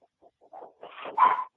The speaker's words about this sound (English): Unless he's yelping something to us. I don't speak Chihuahua.